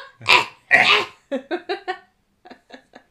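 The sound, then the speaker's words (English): A person imitates a growl with two loud, raspy, throaty bursts, followed by a quick series of shorter voiced grunts that fade to quieter, clipped sounds. “And also, like, because growl is sometimes used in, like, a sexy way. Like, oh, he growled.”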